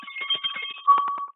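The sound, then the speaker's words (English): A loud hand bell, called a May bell, rings with rapid, rattling strikes, its bright metallic clang holding a steady high tone and swelling near the end before cutting off abruptly. “We also have what we call the May bell. And that's very loud.”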